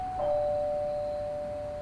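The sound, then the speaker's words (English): A doorbell, pressed by someone waiting at the door for it to open, chimes with two clear, sustained tones, the second slightly lower and lingering to the end, heard alone against a faint low background hum. “And I press the doorbell and wait for the door to open.”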